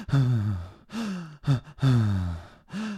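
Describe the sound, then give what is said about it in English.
A person imitates exaggerated, heavy breathing, with five loud, breathy, groaning sighs and gasps in a steady in-and-out rhythm and brief pauses between them. “I knew this guy that had a breathing habit.”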